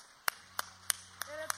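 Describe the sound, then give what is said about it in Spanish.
Five sharp, evenly spaced claps in a steady beat as an audience applauds Yahweh during a sermon, over a low hum with a faint sustained voice or tone underneath. “Le damos un aplauso a Yahweh, aleluya.”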